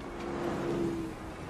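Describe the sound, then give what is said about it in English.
A steady roar of street traffic, with one car's engine hum swelling and fading as it passes through the middle of the short stretch. No one speaks. “Cars rushed by in a joyless parade of steel and glass, traveling from point A to point B as quickly as possible.”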